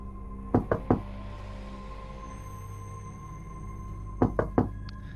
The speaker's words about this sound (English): Knock four times if that's you.